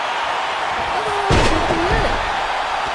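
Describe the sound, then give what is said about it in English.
A single heavy thud of a wrestler, knocked out of midair while attempting a dropkick, slamming down onto the mat. It is loud and rises briefly out of a constant noisy crowd roar, with a faint whistle around it. “The dropkick, but knocked out midair.”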